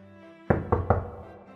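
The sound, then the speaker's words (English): Three quick, firm knocks on a wooden door in close succession, over a low steady background hum, with no voices. “Okay, so I'm going to knock.”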